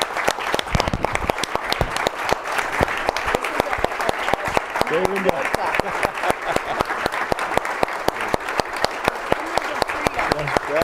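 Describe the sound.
An audience at a panel event bursts into sustained applause to thank a speaker, dense overlapping claps steady and loud for about ten seconds, with faint voices murmuring underneath.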